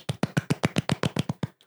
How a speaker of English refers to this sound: I did the golf clap though.